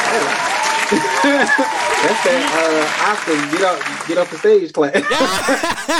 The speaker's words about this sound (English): Wrap it up. He said, that's not even just your regular clap. That's your get off the stage clap.